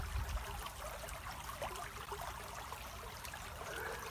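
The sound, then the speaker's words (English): A stream flows steadily at sunset, its water trickling and babbling in a continuous, even wash of sound with no voices present. “Enjoying the sound of the water.”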